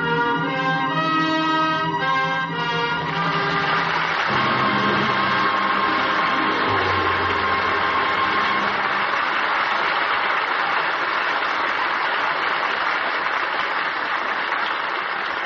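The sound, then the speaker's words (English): A swell of orchestral music closes in the first few seconds, then audience applause for a performance of Anna and the King of Siam takes over: a loud, dense, steady wash of clapping that continues unbroken to the end, with no voices. “That well-deserved applause invites a curtain call.”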